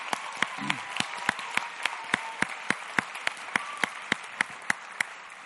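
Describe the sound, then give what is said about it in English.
Audience applause at an event, given for the event's organizer: a steady run of crisp, evenly spaced claps stands out over a soft, thin wash of background clapping, holding a consistent rhythm and moderate loudness with no voices. “so let's give her a good round of applause.”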